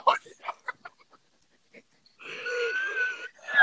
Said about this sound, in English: What the hell was that? It's like a frog burp. Did that sound really bad?